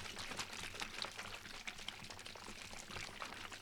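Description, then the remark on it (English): A bottle of Market Side naturally flavored lemonade is shaken, its liquid sloshing in quick rhythmic bursts of bright, fizzy splashing that continue steadily for a few seconds with no talking. “Yeah, it's like a little cartoon lemon, and it says shake well. So let's shake well.”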